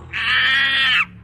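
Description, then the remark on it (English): A chimpanzee lets out one loud, shrill screech lasting about a second, harsh and sustained before cutting off abruptly, with no talking over it. “A chimpanzee? You got something against monkeys?”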